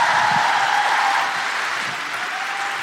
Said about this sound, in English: Please keep that incredible applause going for a guilty feminist favourite. She's taking us out to the interval.